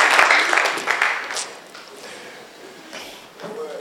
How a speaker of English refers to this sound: Clap your hands together for the Lord, and please be seated.